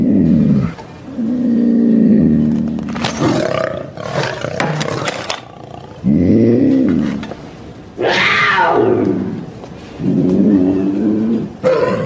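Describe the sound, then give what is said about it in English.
A puma roars loudly in a series of long, rumbling bursts with brief pauses between them, some rising into a harsh, strained growl, in a Jack Link's Jerky commercial. “It's a puma.”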